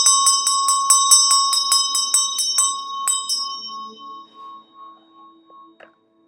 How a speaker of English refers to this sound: And I'll ring my bell to set a clear, safe, and open field.